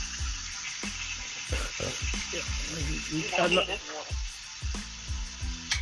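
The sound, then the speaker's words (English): Steady hiss of running water coming through a phone line, a constant bright rushing noise, with muffled voices talking intermittently over it. “I was just going to tell you to mute your fucking phone so we don't hear that water and shit.”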